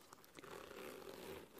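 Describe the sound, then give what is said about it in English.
The side zipper of a small compact bag is pulled open in one steady, raspy stroke lasting about a second, quiet, with no voices. “Has a back compartment and side zippers.”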